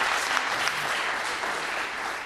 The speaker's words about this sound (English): Let's clap it up for the big guy. That was great.